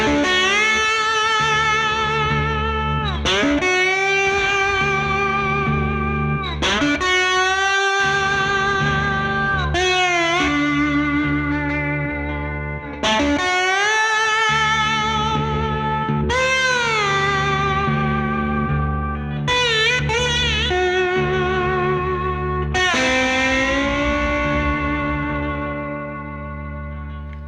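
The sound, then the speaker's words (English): An electric guitar played through a Solo Dallas Storm tone pedal: a lead phrase of sustained, slightly overdriven notes with bends and slides, repeated in short swells, steady and loud with no talking. “Solo Dallas Storm Pedal: The Secret Ingredient to Classic Guitar Tones”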